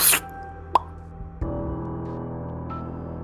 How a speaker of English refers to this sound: Steg and Yora, a ghostly raccoon appears in the room with you. With a sizzle and a pop sound.